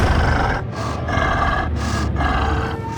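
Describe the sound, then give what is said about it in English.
Deep, heavy breathing from a hulking beast in pitch darkness, loud, with rasping inhales and exhales in a steady rhythm over a low, growling rumble. No one speaks. “Just then, the blackness in front of her moved, and she heard something breathe.”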